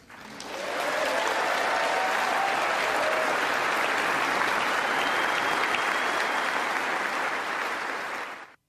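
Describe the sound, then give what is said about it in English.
Thunderous applause from members of Congress for Zelensky, a dense, steady roar of clapping that swells in quickly, holds loud and unbroken for several seconds, then cuts off. “And the Associated Press reported Zelensky received thunderous applause from members of Congress”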